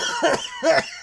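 Two quick, breathy bursts of a coughing laugh in reaction to a suggested name, fairly loud, each a short chesty huff with a voiced edge, separated by a brief pause and with no talking.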